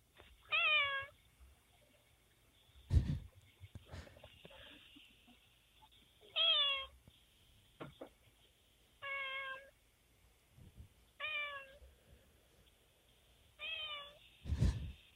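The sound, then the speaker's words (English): A cat on a doorstep meows five times into a Ring doorbell camera, each a short, clear, drawn-out cry, spaced a few seconds apart, with a couple of sharp knocks between calls and no talking. “but then sure enough, there she was, just popped up on the doorstep, meowing right at the camera.”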